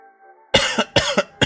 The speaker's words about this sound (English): That cough wasn't intentional, but you can see what I was going for.